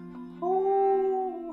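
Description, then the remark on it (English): A single drawn-out, fairly loud howl that swells after a low opening tone, holds steady for about a second, then slides back down and fades. “And then he howls.”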